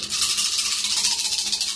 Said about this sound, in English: So go ahead and start by rolling the unused dice in the center to get us some random numbers.